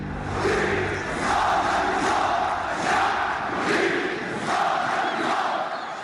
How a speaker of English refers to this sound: The crowd is chanting, "The people want the downfall of the regime."